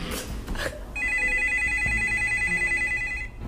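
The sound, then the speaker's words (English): A telephone rings with a bright, warbling electronic trill that holds steady for about two seconds, fairly loud, after a brief burst of muffled noise at the start. “So we're going to be answering some more phone calls about everything.”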